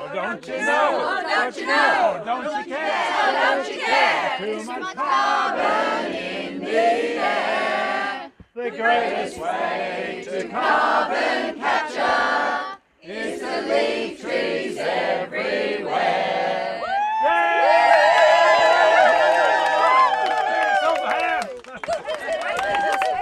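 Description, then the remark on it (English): An outdoor protest crowd in New South Wales, addressed by Greens candidate Adam Guise, chatters loudly and steadily, many voices overlapping, with a stretch of sustained group chanting near the end before the noise briefly thins out. “Greens candidate for the seat of Lismore, Adam Guise, spoke to the crowd about the determination that we need to carry on this fight and to remain peaceful and respectful as we restore sanity to the administration of our public native forests”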